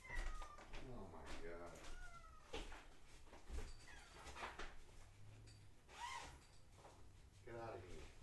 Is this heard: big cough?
no